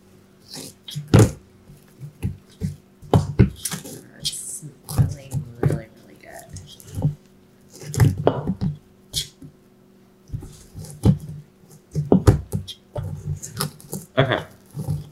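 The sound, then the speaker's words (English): Thick cookie dough being stirred by hand in a mixer bowl to combine it a little more, with uneven squishing, scraping strokes and soft thuds coming in irregular bursts. “Okay, so I just took out the bowl out of the mixer, and I'm just going to add it a little more. I'm going to mix it a little more, so it is combined a little more, but we didn't want to mix it in the mixer anymore because it would get overmixed.”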